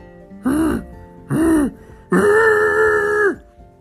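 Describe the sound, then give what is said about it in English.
A voice imitates a Yeti growl: two short, rough bursts followed by one long, sustained roar, loud and throaty with a rising then falling pitch. “"Ah!" Jake shouted. "It's a Yeti!"”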